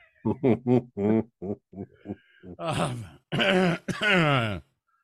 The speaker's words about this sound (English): Good cough button. Good job.